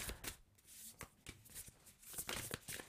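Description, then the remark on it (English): Oracle cards being shuffled by hand to draw a self-care card for water signs: a quick run of crisp, papery flicks and riffles in uneven bursts, soft overall, with no talking. “All right, so we're going to close this out with a self-care card for water signs.”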